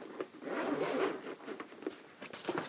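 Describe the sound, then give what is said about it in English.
The zipper on a lunch carry case is pulled in a long, raspy stretch as a bento box is packed into the case in a kitchen, followed by a few shorter tugs and clicks, with no voices. “And this kind of bento box goes in the other lunch zipper carryout case.”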